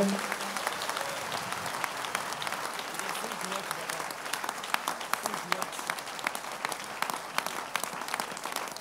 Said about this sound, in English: Clap your hands to the Lord if you can.